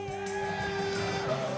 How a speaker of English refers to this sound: Are you okay with that? Yeah. Good. It sounds like it from all the yelling and screaming.